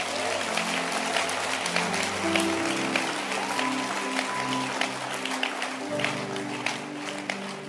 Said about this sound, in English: And I think you can clap your hands for that.